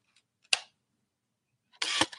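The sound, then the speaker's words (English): A 35mm film camera, held up to a microphone, fires its shutter at a fast shutter speed with one crisp mechanical snap, followed after a short pause by a louder, brief mechanical clatter. No one speaks. “We'll switch to a faster shutter speed, and I'll let you hear that too.”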